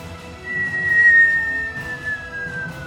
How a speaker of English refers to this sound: You hear the almost entirely stereotypical cartoon whistling sound first. It's like meteoric sound as this thing is plummeting now towards the ground. Yeah, I mean, just the first sound effect out of the stock files.